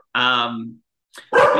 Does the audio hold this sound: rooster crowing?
no